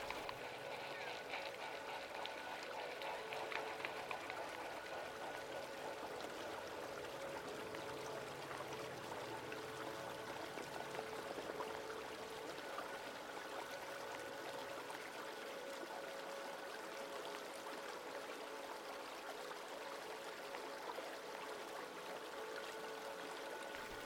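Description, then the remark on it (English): A startled flock of eider geese clumsily runs off across a river, pattering and splashing on the water in a busy, continuous rush, set against steady flowing water and a faint, even mechanical hum. “A flock of eider geese are startled . They run off, clumsily on the water.”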